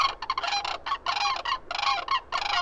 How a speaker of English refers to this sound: They make sounds that are like, or something. I don't know. Okay. I'll just cut in an actual sandhill crane.